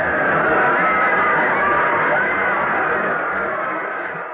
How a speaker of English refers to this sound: And Smith is across for a touchdown. Listen to that crowd cheer.